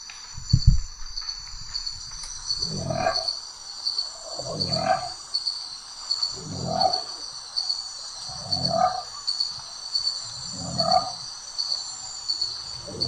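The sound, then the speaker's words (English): Crickets chirp in a steady, continuous high-pitched chorus throughout, while a deeper animal call repeats roughly every two seconds beneath them. No one speaks. “I mean, the crickets make it sound like it's by water, so it kind of sounds like a bullfrog.”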